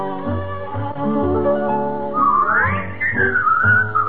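A bright whistled melody rises and glides over a steady instrumental backing, coming in strongly partway through and carrying the tune to the end.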